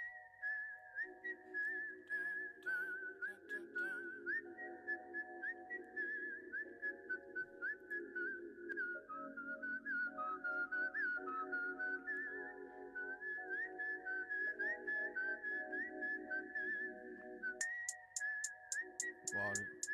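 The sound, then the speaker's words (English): A clear whistled melody glides over a steady backing of chords and a soft beat, with bright percussive accents entering near the end as the song builds. “the whistling intro is from how I understand it, like the whistling part from the actual Kill Bill movie”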